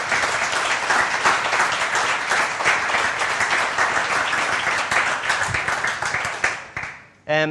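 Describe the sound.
A crowd applauds in a dense, steady wash of clapping that holds for about six seconds before tapering off, and a voice starts speaking just as it fades.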